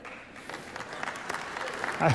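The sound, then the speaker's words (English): An audience applauding, a dense, steady patter of many hands clapping at moderate loudness, swelling slightly toward the end where a brief voice cuts in. “I don't know if that's clap-worthy.”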